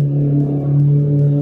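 A loud motorcycle engine drones, holding a steady, throaty pitch with slight swells in revs, with no voices over it.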